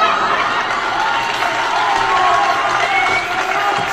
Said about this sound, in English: Oh, I do have a clapping one.